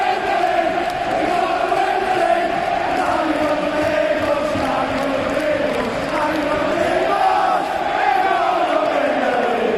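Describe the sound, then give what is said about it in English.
A massive stadium crowd roars loudly and without pause, thousands of voices yelling and cheering together in a dense, sustained wall of sound after Salah's goal for Liverpool. “I just want to talk about the Salah goal, really. Like, not so much even the goal, the explosion afterwards.”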